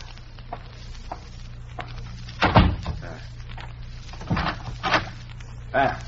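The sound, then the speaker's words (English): A front door swings shut against the wind with a solid thud, followed by a couple of sharper knocks and a latch-like clack as it is locked, over a steady low hum. “It's the wind, madame. I will close the door.”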